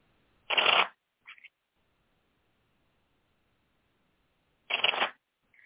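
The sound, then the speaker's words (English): Two separate bursts of tarot cards being shuffled, each a quick riffling rush lasting under a second, with a soft tap in between and near-silence filling the long gap. “And then I'm going to look up some other ones while you're shuffling.”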